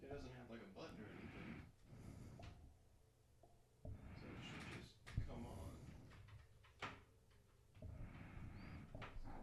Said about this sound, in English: And now my dog's trying to break in the door to the studio room, too. It's kind of, oh, God, he did it. He got in. He got in.